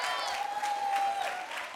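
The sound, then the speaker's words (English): Before a sermon, an audience applauds the group who put on the opener, clapping steadily in a dense, continuous burst lasting under two seconds, with a thin sustained whistle-like tone running through the middle of it. “Now, you guys saw in the opener and in the video, hey, can we give a round of applause to the guys who put on the opener today?”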